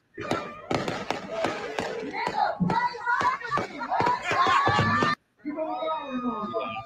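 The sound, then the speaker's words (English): Fireworks pop and crackle outside in a dense, rapid string of sharp bursts for about five seconds, with crowd-like voices mixed in, then a brief pause before fainter whistling tones. “Fireworks. Fuck them fireworks.”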